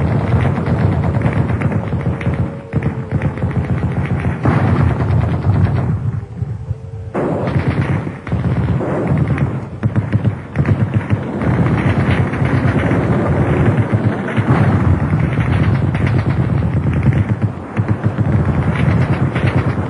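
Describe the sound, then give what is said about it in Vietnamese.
Dense, continuous gunfire mixed with heavy booming blasts like bombs exploding during an air raid on Hanoi amid rain and thunder, loud and sustained throughout with a roaring rumble underneath and no voices. “Tiếng sấm, tiếng sét, tiếng bom, tiếng súng, tiếng tên lửa, tiếng mưa rơi, rú rít tức mù.”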